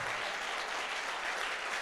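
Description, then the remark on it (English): A standing audience claps together to celebrate Jesus in a dense, continuous wash of applause, steady and fairly loud throughout with no voices standing out. “Clap like there's no tomorrow.”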